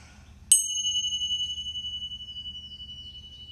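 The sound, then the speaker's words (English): A single bright bell is struck once to clear the energy, its clear ringing tone sustaining and slowly fading with a gentle shimmer over a quiet low hum, with no voices present. “So we're going to take a deep breath again. Ring the bell.”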